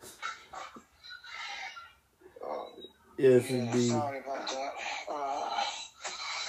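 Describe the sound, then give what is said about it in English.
Two dogs bark in loud, overlapping bursts, a rapid cluster of barks after a few quieter muffled sounds, with indistinct voices mixed in; the two dogs start barking because somebody knocked at the door. “We have, my sister has two dogs, so whenever somebody knocks at the door, they both start barking.”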